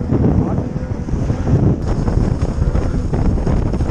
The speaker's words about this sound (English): The audio you're about to hear is from the boat that day, as the crew powered out into the open water.